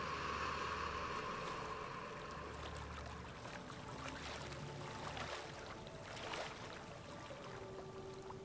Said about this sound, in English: And just take it in. Feeling your body connected to those ocean waves. Your breath in sync.